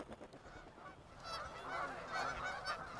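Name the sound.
geese honking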